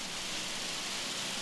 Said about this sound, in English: and now I've got hail. Wow.